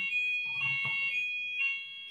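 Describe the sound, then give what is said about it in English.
A fire alarm shrieks with a steady, piercing high-pitched tone that holds continuously, with some low rumbling noise underneath in the middle, fairly loud. “No, we've had an alarm go off while we was live.”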